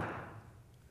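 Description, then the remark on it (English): A single dull knock or thud, heard at 5:17 a.m., lands at the start and fades into a low, lingering resonance. It is quiet overall, with no voices or other sounds following it. “I should start thinking there's an intruder, but they don't usually knock.”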